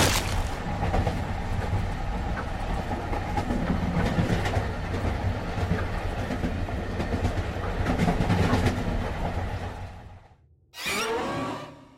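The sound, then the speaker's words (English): A train roars past in a loud, steady rumble with rhythmic rattling of cars, drops out briefly, then a short burst of harsh metallic squealing on the rails ends it. “I thought I saw the ghostly woman embrace him for a split second, a rictus grin plastered across her scary face, before the crunch of bones and the squeal of metal on metal filled my ears.”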